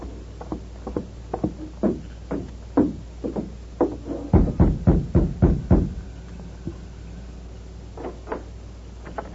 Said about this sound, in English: Hold it. Steady. I'll rap on the door.